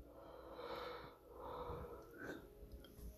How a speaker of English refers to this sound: Oh, I'm so sorry for yawning. If you guys listen to this, you guys have earphones on. In the future, you might want to take your earphones off. Because I'm yawning in your ear. So sorry. I apologize for my yawn.